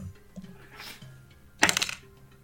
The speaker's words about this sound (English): Sam and Robbie, both roll a d8, please.